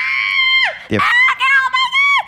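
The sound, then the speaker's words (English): A voice imitates the high-pitched, excited screaming of people when a house door is opened, in a couple of loud, sustained shrieks with falling pitch at the ends, separated by a brief breathy gasp. “Every person's house that they go to, they open the door and immediately everybody screams.”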